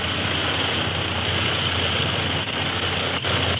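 An airplane engine drones steadily throughout, a dense, unbroken roar with a low humming undertone and no voices, holding an even loudness apart from a couple of slight dips.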